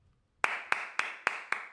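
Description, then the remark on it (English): Five sharp, evenly spaced hand claps ring out in a steady rhythm, each crisp and bright with a short decay, with no talking underneath. “Round of applause.”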